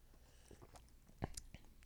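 Quiet mouth sounds of someone sipping a lemon-flavored soju drink: a few soft wet slurps and swallows, with a sharper burst near the middle and no talking.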